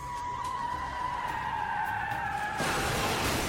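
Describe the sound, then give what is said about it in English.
Tires screech in a long, steady, slightly falling squeal for about two and a half seconds, then a loud, noisy burst as the car crashes into a fire hydrant, bursting it open. No one speaks. “The hydrant the car crash burst open falls under the billion-a-year insurance policy the city took out for these kind of damages.”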